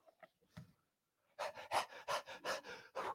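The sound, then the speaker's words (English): A person imitates a deer panting for water: a few soft breaths, a short pause, then a run of loud, rapid, rhythmic huffing breaths like an animal gasping for water, with no words spoken. “As the deer pants. What is it to pant?”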